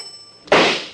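A doorbell rings at a locked door with a steady, high buzzing tone for about half a second, then a sudden loud, broad bang, a pistol shot from inside the house, cuts in and slowly fades.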